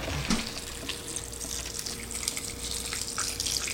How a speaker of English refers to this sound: All right, let's get some nice filtered water here.